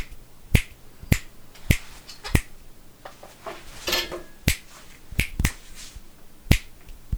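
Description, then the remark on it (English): A series of sharp, crisp finger snaps, roughly eight or nine, coming at a loose, uneven pace with brief pauses between them. No one speaks. “Y'all hear them snaps?”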